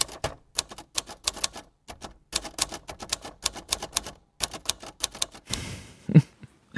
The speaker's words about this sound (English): Then final one, which is, in some ways, is very obvious, is the typewriter.